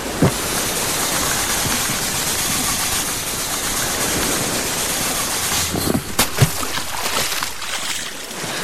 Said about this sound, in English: God, I hope this raft inflates right side up.